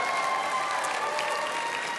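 An audience claps steadily, a dense wash of many hands applauding together at an even, moderate loudness throughout, with no voices standing out.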